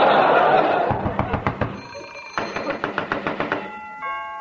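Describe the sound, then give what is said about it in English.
Someone at the door sounds off with quick, evenly spaced sharp raps or rings, two bursts of about a dozen strikes each, clear over a low background hum. “is that somebody at the door?”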